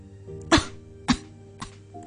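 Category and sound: human body sound, girl coughing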